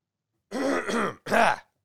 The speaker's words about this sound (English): Anyways, let me clear my throat.